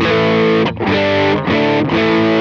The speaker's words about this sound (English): You get an overdrive sound.